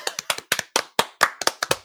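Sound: hand clapping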